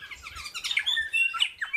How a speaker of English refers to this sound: And it's not until 6 weeks old, in fact, that they can start doing this kind of baby babble. And then around 13, 14 weeks old, you can finally start to hear some similarities with the species song that they're trying to learn.